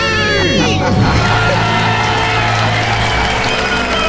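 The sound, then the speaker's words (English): A large crowd cheers wildly and loudly right after a couple shouts "We're debt-free!" Overlapping shouts, whoops and applause stay at full intensity throughout without letting up. “And the crowd goes wild.”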